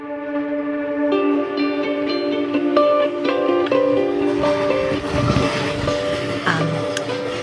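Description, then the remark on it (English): An Amtrak passenger train travelling from Penn Station to Albany rolls along the rails, with a steady mechanical rumble and sustained tonal hums and squeals layered over it, continuous throughout. “Now on the Amtrak from Penn Station to Albany, heading into some pretty hardcore unknown.”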